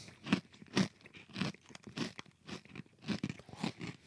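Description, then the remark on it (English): Loud crunching of a hard, crisp baked snack tasting of apple pie and cinnamon being chewed, with sharp bites repeating in a steady rhythm about twice a second. No talking. “They almost crack your teeth crunchy, which I love.”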